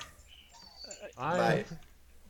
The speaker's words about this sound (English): Dog goes nuts.